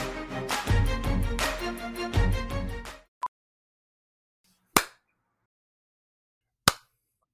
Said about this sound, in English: Dude, you don't have to keep clapping.